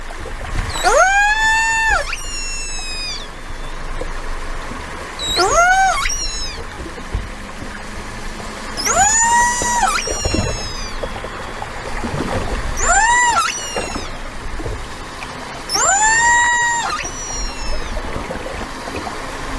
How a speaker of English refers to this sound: Okay, so there we go. That clip or sounds from killer whales recorded off Fish Hoek in False Bay.